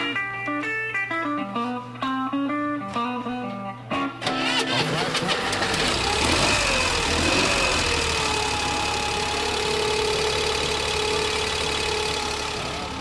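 modified Corvair engine idling

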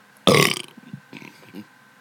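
burp

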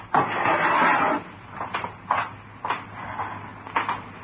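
drawer opened

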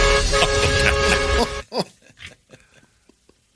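truck horn honking

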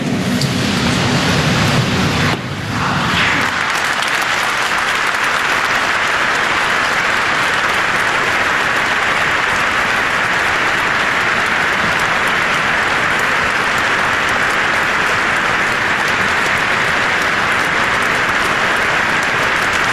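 spontaneous applause

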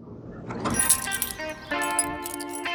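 keys jangling

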